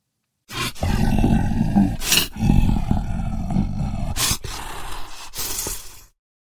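A deep, rumbling monster growl sound effect roars continuously for about five seconds, rough and loud, with brief harsh bursts of breathy noise punctuating it before it cuts off abruptly.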